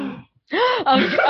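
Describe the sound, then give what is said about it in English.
A brief breathy burst, a moment of silence, then a loud gasp of surprise with a rising and falling voiced pitch, followed by more overlapping vocal reactions. “an audible gasp.”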